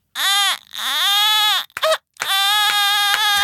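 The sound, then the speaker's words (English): A voice imitates a wailing baby in three strained, high-pitched bursts: a short cry, a long rising-and-falling wail, a quick hiccuping sob, then a loud sustained bawl. “Oh, the only thing they can do is cry on our subreddit, which they do constantly.”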